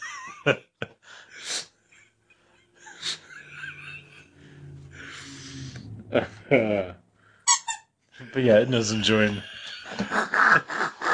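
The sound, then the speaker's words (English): A squeaky toy squeaks repeatedly in quick, high-pitched bursts, some loud, scattered between and over people talking and laughing. “enjoying her squeaky toy.”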